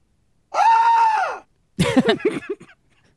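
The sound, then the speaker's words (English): A single loud, sustained high-pitched scream from a soundboard sound effect, lasting about a second, followed after a short pause by a brief burst of voice. “It's a good scream. That was the scream that came with the soundboard, and it sounds like our friend”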